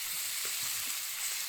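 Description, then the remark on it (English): The skin of Copper River king salmon frying crispy and blackened in a pan gives off a steady, bright crackling sizzle, with a dense hiss in the high range and faint pops scattered underneath, and no voices. “We're going to call it blackened salmon.”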